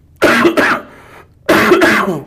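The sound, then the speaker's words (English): Two bursts of harsh coughing and throat clearing, each made of a couple of quick rasping hacks, separated by a short pause; loud, with no talking. “I'm only going to cough while you're talking.”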